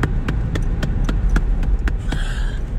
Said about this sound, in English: smacking the melon.